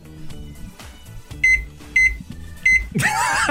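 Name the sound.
microwave beeping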